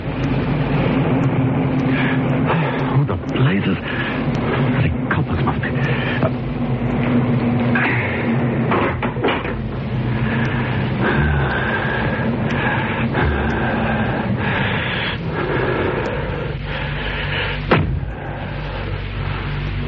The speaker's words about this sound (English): He was halfway down when he heard the car approach.